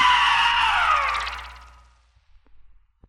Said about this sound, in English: Now scream!